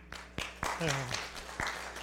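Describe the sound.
An audience applauds with a steady wash of clapping, punctuated by a few sharper, louder bursts, while a single voice briefly rises above the applause midway through.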